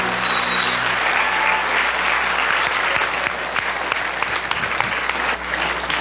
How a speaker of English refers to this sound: In Jesus' name, put your best hand clap together for